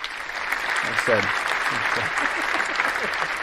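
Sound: applause sound effect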